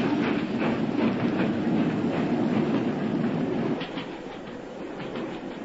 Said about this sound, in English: Stop the train, I say!